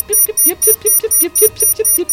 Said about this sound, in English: You hear a new alarm.